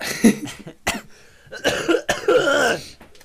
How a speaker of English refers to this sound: I just started recording and I just coughed straight into the mic. It was such a rude awakening.